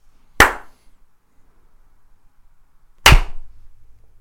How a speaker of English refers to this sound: Two slaps and like a kind of a aggressive hit against the microphone. I'm actually afraid to ask why you hit them.